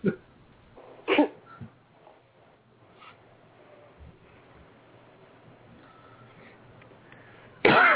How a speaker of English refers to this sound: Excuse me. A little cough there.